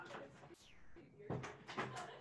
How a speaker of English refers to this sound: One second, I'm closing the door.